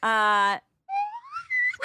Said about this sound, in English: Oh, and the hottest of all book tips is that we got a slide whistle